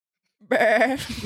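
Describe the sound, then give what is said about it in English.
A person's voice mimics a sheep's bleat: one wavering, nasal "baa" about a second long, fairly loud, after a short silence. “I grab the sheep's face and I'm like, Mr.”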